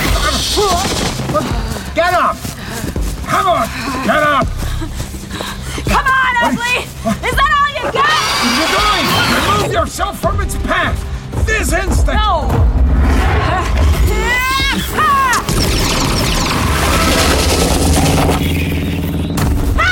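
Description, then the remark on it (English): Several sharp gunshot bursts ring out amid a chaotic, loud din of shrieking creature cries and shouting voices, a shot fired through one of the creature's many eyes into its brain, the blasts punchy over the continuous commotion. “Was to get a clean shot through one of its disturbingly numerous eyes. Bang! Straight into the brain.”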